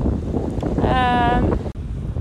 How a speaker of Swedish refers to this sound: Det kanske inte hörs för det blåser som in i helvete.